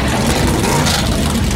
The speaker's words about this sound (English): I think you can tell by the roar of the crowd, everybody is ready here in Daytona. The engines come to life, 40 and all.